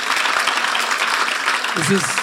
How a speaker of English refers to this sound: Applaud right now if that's not going to happen.